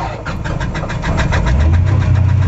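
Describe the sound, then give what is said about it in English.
A small plane's engine cranks and catches as the plane starts up, its rhythmic chugging building into a loud, steady low roar, with no voices present. “You hear and you feel the roar of the engine.”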